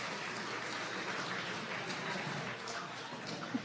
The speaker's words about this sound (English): Wow, give them a round of applause for doing the right thing. Welcome.